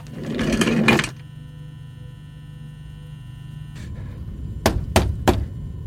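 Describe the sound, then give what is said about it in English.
A short rumbling roll of small office chair wheels over a hard floor as someone rides around in the chair, then a steady low hum and a few sharp clacks and thunks as the chair shifts and bumps. “I'm sitting in the office chair. I'm wheeling around on it.”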